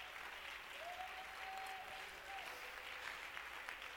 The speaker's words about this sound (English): Could we give the Lord a good hand clap of praise tonight?